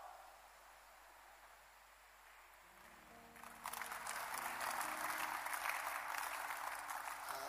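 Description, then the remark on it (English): A low murmur of crowd noise gives way to a loud burst of audience applause, dense, steady clapping that continues for several seconds. “If you can clap again, I will remove you from the suspicion list.”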